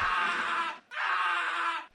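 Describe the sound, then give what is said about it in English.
A man screams twice in quick succession, each cry loud, raw and sustained, split by a brief pause, with no talking around them. “It's a man screaming.”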